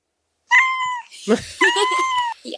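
A cat meows twice, each call loud, drawn-out and tonal, separated by a short burst of rustling noise, with a brief faint chirp trailing at the end.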